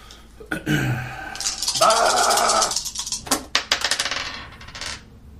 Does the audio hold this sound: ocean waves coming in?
no